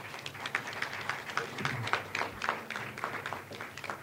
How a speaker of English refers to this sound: So we were very fortunate to have a good group of sponsors this year. Give them all, please, a round of applause.